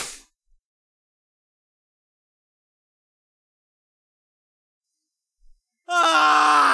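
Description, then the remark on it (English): After a long silence, a loud voice suddenly lets out a high, wailing screech that slides downward in pitch, imitating a screaming arrow whizzing close past. “And an arrow is flying very close to you, very loudly. It seems to be screaming.”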